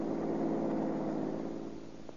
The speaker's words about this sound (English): Pull in behind this red coupe car. That's his car, I think. Well. Hey, the motor's running in that car. All set for a getaway, eh?